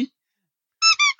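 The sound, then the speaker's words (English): A squeaky duck toy is squeezed three times in quick succession, giving shrill, buzzy honks of steady pitch after a long silence. The second squeak is the longest, the last one shorter. “That breaks our rule about incredibly fun, noisy toys on the show.”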